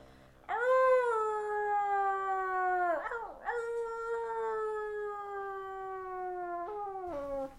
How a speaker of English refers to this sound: The wolf howls twice, and we are drawing to closing time.